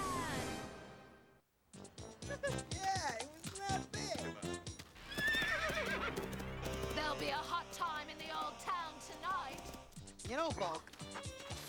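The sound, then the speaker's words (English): A horse ridden by the Flamehead Monster in Power Rangers whinnies loudly over a clatter of hooves clip-clopping, with busy, layered sounds and voices mixed throughout the scene. “He rides a horse?”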